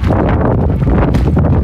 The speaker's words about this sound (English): As you can probably hear, it's extremely effing windy. Whoa, I just about fell.